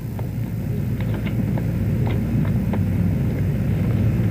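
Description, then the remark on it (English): A rocket engine roars at ignition with a deep, steady rumble that holds loud and even throughout, broken only by a few faint, brief crackles above the low roar. No voices. “And ignition.”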